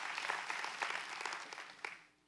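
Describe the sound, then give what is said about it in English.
A church audience claps for God during a sermon, a dense, steady burst of applause lasting about two seconds, fairly quiet overall, with a few sharper claps standing out before it fades away. “Well, come on, give God a big hand clap if you're really with the pastor.”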